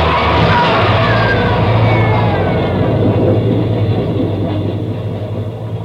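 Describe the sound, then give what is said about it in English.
A train roars past in a subway tunnel, a loud continuous rumble with a heavy low drone and metallic squealing, fading slightly toward the end. “He's trapped, Ben. There's a train coming through.”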